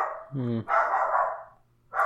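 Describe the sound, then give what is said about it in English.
A dog barks loudly, a few sharp barks in quick succession, the first with a tonal, whining edge and a final bark after a short pause. “Hey, dog.”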